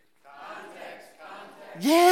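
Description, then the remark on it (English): An audience of Bible students murmurs together for a moment, then bursts into a loud, unified shouted cheer, the Bible students' cheer, that swoops upward in pitch and holds strong at the end. “By the way, what's the Bible students cheer?”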